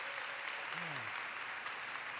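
A steady round of applause from a crowd for a pastor, dense continuous clapping at even loudness throughout, with a faint voice briefly audible underneath.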